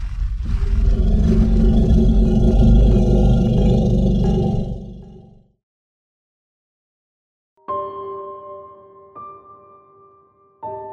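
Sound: animal growling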